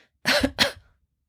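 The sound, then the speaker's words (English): Two short, soft coughs in quick succession, fairly quiet, made deliberately as a gentle cough while the person feels the movement of the body under their hands, followed by silence. “away from the microphone a little bit to do this, is just make a gentle cough.”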